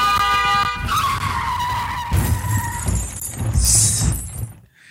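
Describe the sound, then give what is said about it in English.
In a video game, a car's tires squeal in a long skid, followed by a loud crunching crash into a tree with a brief shattering burst, then the noise cuts off abruptly. Loud game sound effects with no talking. “That damn tree. Who put a tree in the middle of the street?”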